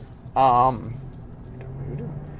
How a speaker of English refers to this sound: Sorry, a little traffic there.